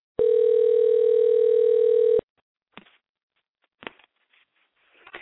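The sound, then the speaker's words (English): A loud, steady telephone dial tone from a call to a cell phone on speakerphone hums for about two seconds, then cuts off, followed by a few faint clicks and brief rustling noises. “You're calling my cell phone that has a speaker phone.”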